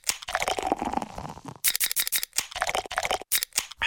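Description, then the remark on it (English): Bud Light beer sounds in quick succession, used as a messaging code saying happy hour: sharp clicks, crinkly crackles and hissing fizzy bursts, grouped into short rhythmic runs separated by brief silences, with no voices. “We've invented a new messaging system using the crisp sounds of Bud Light.”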